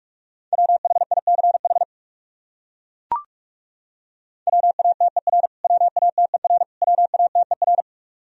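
Rapid Morse code of common English words keyed at 45 words per minute in a steady mid-pitched tone, fast dits and dahs in four short bursts, with a lone click in the silent gap between the first and the rest.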